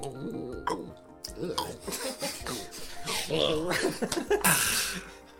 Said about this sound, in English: All right, I'm going to drink this delicious normal water. He drinks the delicious water on the count of three.